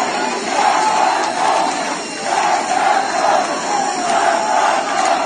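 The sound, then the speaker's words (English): A large crowd at Kian's funeral in Iran chants together in loud, rhythmic waves, saying death to Khamenei, many voices rising and falling in unison with short pauses between phrases, dense with no single speaker standing out. “So people are chanting at Kian's funeral.”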